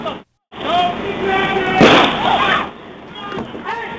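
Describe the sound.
A police officer fires a beanbag round, a projectile filled with lead pellets, at a man standing beside his car during a standoff: a single sharp, loud crack that cuts through overlapping shouting voices, which keep going briefly after the shot.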